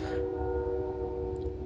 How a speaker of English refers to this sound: That's a loud train coming.